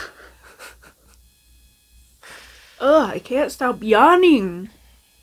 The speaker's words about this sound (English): I can't stop yawning because I keep thinking of this TikTok. It's 12, it's after midnight.